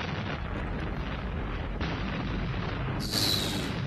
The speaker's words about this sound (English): So are we to assume that everybody escaped before the explosion? Because otherwise, Batman just killed a whole bunch of people.